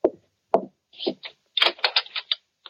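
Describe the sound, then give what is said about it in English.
Knocking on a front door: two firm, separate raps, then a quicker burst of several more knocks, distinct, with no voices. “The front door.”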